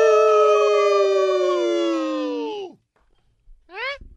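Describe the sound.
A radio show caller from Virginia imitates a wolf howl in one long, loud, sustained voiced note that sags and drops off at the end, followed after a brief pause by a short rising yelp.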